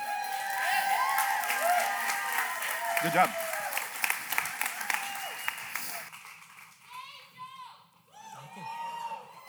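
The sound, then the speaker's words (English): A church audience at a morning service cheers and applauds loudly to cheer on a speaker, with shouts over steady clapping for about six seconds, then the noise thins into scattered voices and a brief spoken encouragement. “Cheer him on.”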